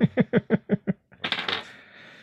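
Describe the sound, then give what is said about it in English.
A single die: six quick, evenly spaced rattles like dice shaken in a cupped hand, then a short pause and a loud clattering tumble across a hard surface that fades out. Clear, no talking. “Is that what you're doing on camera? You're rolling a dice?”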